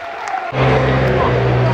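A large stadium crowd of Millwall fans at a football match applauds members of the armed forces as they walk around the pitch, a dense, continuous wash of clapping that swells louder after half a second and stays loud, with a low steady hum running underneath.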